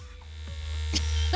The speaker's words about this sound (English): This is a toothbrush. I would have put it back on the shelf and let it just sit there and vibrate.